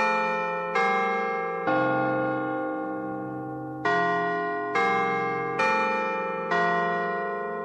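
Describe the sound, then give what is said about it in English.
A Westminster chime doorbell rings out its eight-note melody alone, clear: a run of resonant bell tones, a brief pause, then a second phrase, each note ringing into the next. “the notes that we would hear and automatically connect with the doorbell sound, actually has a name, and it is called Westminster Chime.”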